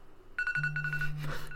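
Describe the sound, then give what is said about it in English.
An electronic alarm goes off: a steady high-pitched tone with rapid pulsing beeps, joined by a low sustained drone, fairly loud for about a second with no talking. “I have an alarm going off.”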